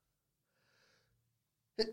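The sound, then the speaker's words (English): A soft, wheezy inhale builds up, followed a moment later by a single sharp, loud sneeze. “Bless you.”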